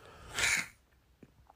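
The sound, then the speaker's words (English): One sharp, breathy sniff from a person with a stopped-up nose after sneezing, a quick hiss of air drawn in through the nose, lasting under half a second, followed by a couple of faint clicks and quiet. “Sorry for that sniff in your ear.”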